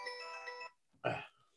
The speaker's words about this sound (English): Sorry about that. Did you hear any of that? Oh yeah, a little bit. It's all right. Oh yeah, it's a stupid doorbell.